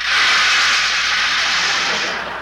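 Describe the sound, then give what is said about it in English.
Rain pours down in a steady, loud hissing wash, an even bright rush of noise that holds for a couple of seconds and eases slightly at the end, with no voices. “Just then it started to rain.”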